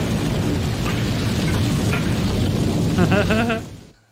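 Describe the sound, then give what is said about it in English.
A loud, sustained movie explosion in a scene with Loomis and Michael roars with dense, rumbling blast noise for about three seconds, a brief voice cutting through near the end before the sound abruptly drops away. “And this incredible explosion.”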